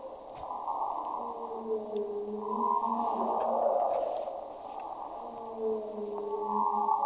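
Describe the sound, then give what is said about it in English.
Underwater recording of river dolphins: gliding, wavering whistles sweep up and down over a steady watery hiss, with faint scattered clicks and no talking. “I can make a whole world of resonance and live in it, swim through it, reflecting you, whistle, click if you can feel that I am here.”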